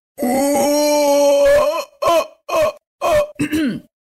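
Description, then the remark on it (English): A voice imitates a small howler monkey's howl: one long, rough, droning moan, then four short guttural barks in a choppy rhythm, loud and throaty, with no other talking. “It's just a howler monkey, a small little howler monkey.”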